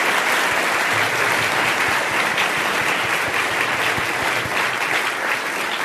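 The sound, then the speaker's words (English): A large audience gives a round of applause for Walter Shorenstein, clapping steadily for about six seconds, a dense, loud wash of hand claps that holds even throughout with no voices breaking through. “And actually, I would be remiss if I didn't ask you all to give a big round of applause to Walter Shorenstein, because he would love it.”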